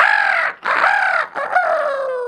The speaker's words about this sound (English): And then finally, early morning, the rooster crowed.